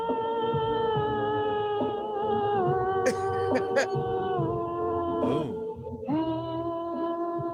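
A lone female voice sings an isolated, unaccompanied vocal track, holding long, strained notes that waver and sound off-key, fairly loud, with brief breaths and slides between pitches.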